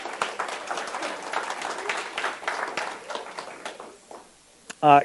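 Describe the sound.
An audience claps for a youth group leader in a dense, steady burst of applause that fades out after about four seconds, followed by a brief loud voice at the very end.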